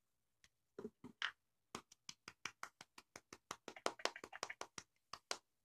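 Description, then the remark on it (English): Light, polite clapping from a couple of people, a few scattered claps at first, then a quick, steady patter of soft claps for several seconds before trailing off. “Golf claps all around, shall we?”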